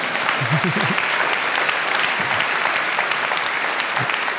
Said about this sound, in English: I think you wanted to clap, and I just want you to do it, okay?